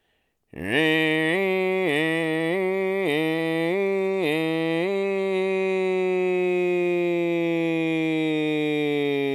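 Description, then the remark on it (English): A voice imitates a small Midwestern town's fire siren: one long wail that swoops upward, pulses in quick rhythmic wobbles, then holds a loud, steady tone. “I grew up in a small Midwestern town, and we had a fire siren that I loved to imitate as a child.”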